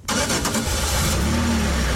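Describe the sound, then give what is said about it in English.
A car engine cranks and catches, the starter's whirring bursts giving way to a steady, loud idle, with a low rising hum settling in. “Should we get back in the car and go?”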